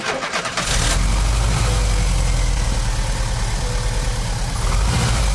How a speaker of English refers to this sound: Then replaced it and the distributor cap, and the engine sprang to life with the first press of the starter button.